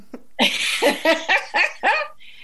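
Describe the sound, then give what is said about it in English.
A female dog whines and whimpers to be let in, a run of about five short, pitched yelps in quick succession, clear with no one talking. “there's my dog, she wants to come in.”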